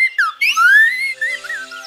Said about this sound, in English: All this bird singing marks the start of a season. Do you know which one? Spring! That's right. It's spring in the Northern Hemisphere.